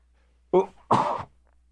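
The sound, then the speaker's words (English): A single loud sneeze by a broadcaster on the air: a short sharp intake followed by an explosive, breathy burst, then silence. “I think it's only the second time I ever sneezed on the air.”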